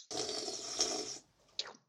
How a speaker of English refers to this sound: Yeah, I've been waiting to crack this. I'm gonna crack a Coke. So just enjoy this ASMR.